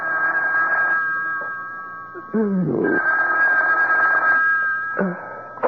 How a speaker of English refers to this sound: A couple of hours later, the phone rang.